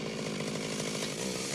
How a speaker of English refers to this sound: No, I don't want to see this circumcision by chainsaw. This scene is literally hostile.